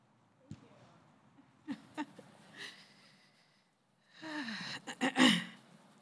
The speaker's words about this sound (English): I'm already clearing my throat. Drives him crazy. When I clear my throat in a microphone.